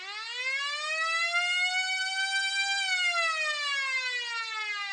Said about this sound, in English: And there's the buzzer, ending our period and ending our podcast as well.